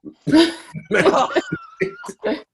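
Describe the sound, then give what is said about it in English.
A voice imitates the squeak of a plastic cover on a couch with a few quick, strained vocal squeals and a drawn-out whining tone, loud, broken into short bursts. “You're just doing the sound.”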